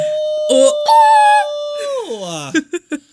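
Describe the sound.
A voice imitates a wolf, holding one long, loud, steady howl that sinks in pitch at the end, then trails into a few short, choppy vocal bursts.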